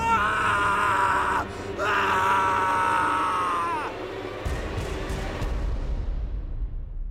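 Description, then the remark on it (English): A man screams in two long, loud, wavering cries with a brief gasp between them, then the scream breaks off into a rumbling, noisy wash of sound that slowly fades. “He screamed helplessly when he realized what he was doomed to become.”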